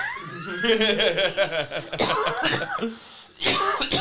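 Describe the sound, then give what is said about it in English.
A person coughs repeatedly, a run of harsh, voiced hacking bursts with brief pauses, ending in a couple of sharp, loud coughs. “Out here coughing COVIDs.”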